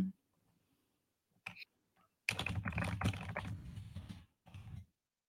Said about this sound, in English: I'm only asking because I'm typing this out and I don't want to be wrong. Not that I wasn't listening.